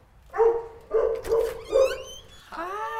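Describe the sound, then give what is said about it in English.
Norman, a dog in Dallas, Texas, gives three short, tonal barks in a loose rhythm, followed by a rising, whiny whimper that trails off at the end; no talking. “In case you were wondering, Norman is the cutest dog ever,”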